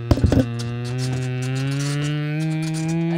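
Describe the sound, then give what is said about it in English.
A person imitates a car engine with their voice: a few quick sputtering pops, then a steady, buzzy low drone that holds for about three seconds, rising slightly in pitch as it goes. “Imagine an engine noise. Like you do an engine,”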